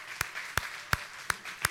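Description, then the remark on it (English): A church audience claps in praise of God at a morning service, in a steady, even rhythm, five sharp unified beats rising above a continuous wash of scattered applause, fairly loud. “Let's do what the angels are doing and give God a hand clap of praise this morning.”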